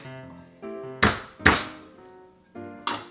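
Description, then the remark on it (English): Garlic cloves being smashed on a cutting board to loosen the skin before mincing, a few sharp thwacks, two loud hits in quick succession and a later one, over a soft steady musical background. “Give it a nice bang.”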